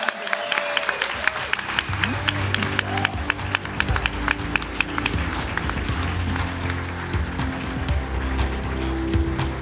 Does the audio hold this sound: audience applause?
yes